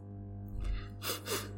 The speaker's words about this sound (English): Tears ran down their cheeks, and they wiped them on their sleeves, sniffling.